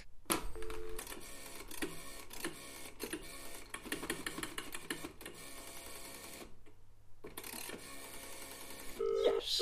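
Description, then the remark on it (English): A telephone is dialed with a run of quick mechanical clicks and beeps, fairly loud. A brief pause follows, then a ringing tone comes through at the end. No one speaks. “It's great that I've now got the interpentance to use the phone unsupervised.”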